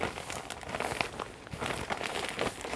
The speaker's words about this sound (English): So I'm just sealing my bag, making sure I've got a good seal. And I'm just going to mix them.